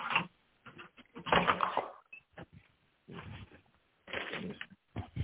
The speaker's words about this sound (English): No, it's me at the door. Nigga, what is it? Are you in a dungeon? Like, how many locks you got on that door? Shut up. Nigga got 12 locks on the door.